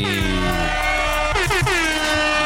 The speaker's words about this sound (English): Letting off mad air horns right now